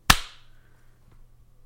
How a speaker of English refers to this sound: What do we clap on? What number? The 1, 2, 3, and you clap on the beat after 3. Sure, fine, whatever. All right, I'll count. One, two, three.